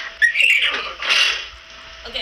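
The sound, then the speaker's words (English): A girl imitates a horse's whinny with a high, shrill, quavering vocal sound that rises and falls in two bursts over a couple of seconds, fading at the end. “Horse.”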